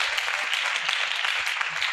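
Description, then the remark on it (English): A large crowd claps hands for the pastor in sustained, dense applause, a steady wash of overlapping claps that stays loud and even for the whole stretch, with no voices standing out. “Clap hands for the pastor.”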